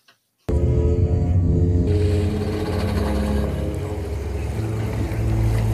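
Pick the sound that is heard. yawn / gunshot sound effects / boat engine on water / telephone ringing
boat engine on water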